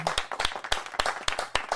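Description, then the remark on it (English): Audience applause, a steady patter of sharp, crisp hand claps arriving in quick uneven bursts, moderately loud with no voices over it, welcoming an award-winning film director. “How about a big round of applause, award-winning director”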